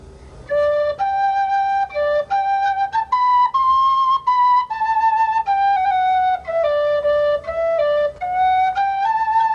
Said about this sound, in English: here in my pocket is a tin whistle from …